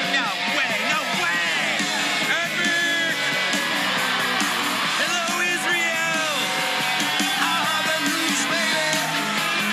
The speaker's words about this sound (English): Out in the crowd, people are celebrating like never before. Happiest, rockin'est place to be. Hey!